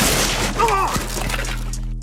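A snack table shatters with a loud, splintering crash, caused by Brash on Bettis, followed by a couple of sharp thuds of debris against a dense, noisy backdrop, all within about two seconds.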